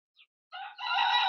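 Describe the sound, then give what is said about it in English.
A rooster crows, a brief chirp followed by a loud, harmonic cock-a-doodle-doo that rises and holds strongly to the end, with no talking. “The rooster's going quack quack.”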